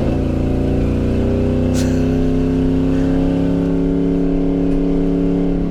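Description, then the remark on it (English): A fifth-generation Camaro ZL1 with headers rumbles loudly, its deep, raspy engine drone holding steady, then swelling slightly as it revs, with no voices over it. “This is ZL1, fifth generation ZL1 with headers.”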